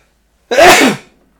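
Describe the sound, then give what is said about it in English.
A single loud sneeze bursts out sharply and fades within half a second, with silence before and after and no talking. “Excuse me, I'm sorry. The Lord bless you.”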